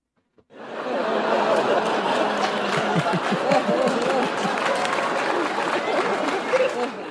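After a brief pause, a studio audience breaks into dense, steady applause mixed with chuckles and murmuring, holding at an even loudness to the end.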